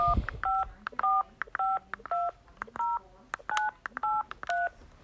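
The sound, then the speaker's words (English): A rapid series of telephone keypad tones, about ten short dual-pitch beeps in quick succession, clear, as a phone number is dialed to call a McDonald's, with no talking. “Okay, this one is not picking up. I've been on the phone for a minute. So next one, we're going to try another one.”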